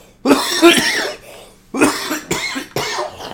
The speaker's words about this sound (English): Sorry, guys. God damn it. I was trying not to cough, and then I coughed into the mic a little bit.